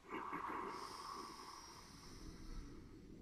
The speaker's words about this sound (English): So we're breathing in for 4 through the nose. Ready? Go.